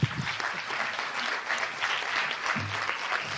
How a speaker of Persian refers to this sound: خواهش کنم خودتون رو تشویق کنید واقعا.